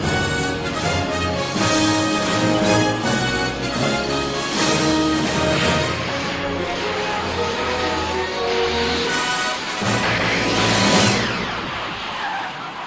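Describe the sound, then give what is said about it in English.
A car speeds off with squealing, skidding tires and a roaring engine, loud, the sound sustained for about thirteen seconds without any voices. “And the car drives.”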